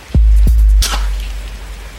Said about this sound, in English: Who's taking a shower?